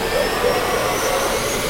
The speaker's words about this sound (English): Start sequence. Start sequence. Ready? Big day. No room for mistakes either. Turbines started. Turbines started.